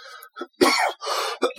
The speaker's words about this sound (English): the cough is still there. Yeah. I tested positive for COVID.